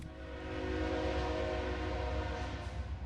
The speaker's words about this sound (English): That's a no bullshit locomotive, everybody. It's got the double stack Connex boxes. This is a train you don't want to flip.